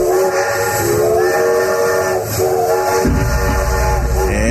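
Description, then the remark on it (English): A loud steam train whistle sound effect blows continuously with layered harmonic tones over hissing steam and a low rumbling engine, shifting pitch slightly, without any talking. “That sound means it's time for the Train Teddy Bear Express.”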